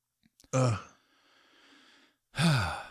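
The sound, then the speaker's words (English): Heavy, noisy mouth breathing into a microphone by a person who cannot breathe through their nose: a loud sigh-like exhale, a long softer breath, then another strong gusty breath near the end, with a few small clicks at the start. “just breathing all over the damn microphone.”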